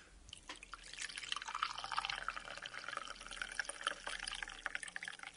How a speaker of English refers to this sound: We better pour this tea and see if it's drinkable. And now for the moment of truth, we'll try and pour the tea out of the teapot.